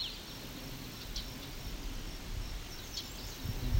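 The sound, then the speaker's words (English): A few sharp, dry ticking calls from a small, very bright yellow bird with a black mask and yellow throat, a worm in its mouth, spaced irregularly and fairly faint against a steady outdoor background hiss, with no one speaking. “Very bright yellow with black mask. It's that ticking.”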